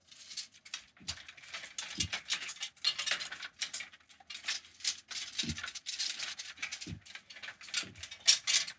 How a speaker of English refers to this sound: And something that I am currently looking at is a big ballerina dance rack type thing with a bunch of empty hangers on it. And I'm just going to kind of run my hand along the hangers like a big, silly wind chime of plastic.